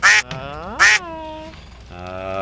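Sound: duck quacking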